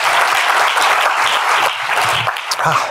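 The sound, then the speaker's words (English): Steady, loud applause from an audience at NYU Abu Dhabi welcoming a visiting professor: a dense wash of many hands clapping at once that holds evenly for a few seconds without pauses or voices. “So I'd like to ask you for your cooperation in giving him a very warm round of applause by me of welcome.”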